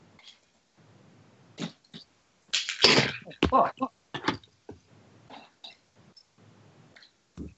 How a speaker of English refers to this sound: Shit's falling out of my backpack because it fell.